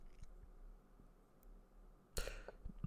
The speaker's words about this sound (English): Excuse me. Sorry, I was burping.